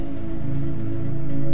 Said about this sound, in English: The rain that seemed to never end was a reminder of the city's despair. It was constant and it felt oppressive, like a weight on Sarah's shoulders.